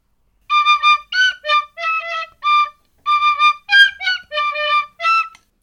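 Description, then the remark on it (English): A tin whistle plays a short tune in two phrases of quick, bright, reedy notes, some held and some clipped, with a brief pause between the phrases and no voices. “Okay, so there are the five tin whistle tunes, all right?”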